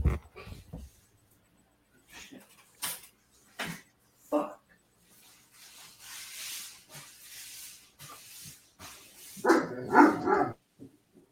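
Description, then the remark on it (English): A big male Great Dane and Labrador mix dog gives a few scattered, gruff barks with hissy, breathy noises in between, ending in one loud bark. “He's a Great Dane lab mix.”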